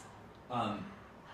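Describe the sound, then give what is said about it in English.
A person imitates heavy breathing with one loud, raspy exhale lasting under half a second, surrounded by quiet room tone. “As you enter, you hear the breathing of another person.”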